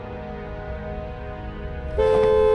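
Steady traffic rumble on Hollywood Boulevard at 9 o'clock fills the background, then a loud, sustained car horn blares suddenly near the end, holding a bright tone over the engine noise.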